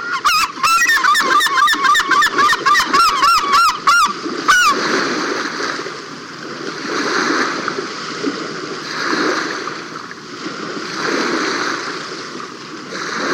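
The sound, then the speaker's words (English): A bathing herring gull gives a rapid burst of loud, honking calls for about four seconds, then falls silent while steady splashing and churning water continue as it ducks, tosses water on its back and works its wings and tail to force water through its feathers. “watched as this herring gull ducked, tossed water on its back, and then worked its wings and tail like a hand pump, forcing the water through his feathers.”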